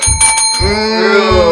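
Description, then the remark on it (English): A bell rung by quiz contestants dings several times in quick succession, loud, then its bright metallic tone rings out and lingers as a sustained shimmer. “Who hit the bell first?”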